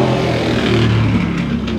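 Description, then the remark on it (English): A motorcycle engine drones loudly and steadily for a couple of seconds as it passes outside, with low harmonic rumble, no voices present. “Thank you, motorcycle.”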